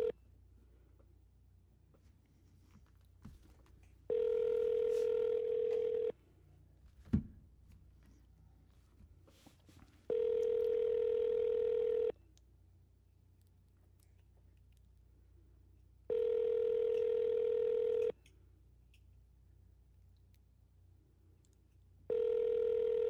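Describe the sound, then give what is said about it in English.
A prank phone call to Terry's Top Dog, a pet care business, rings on the other end: steady ringback tones of about two seconds each repeat four times with silent gaps between, plus a single faint click early on. “You're not calling from the phone?”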